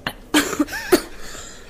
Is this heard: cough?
yes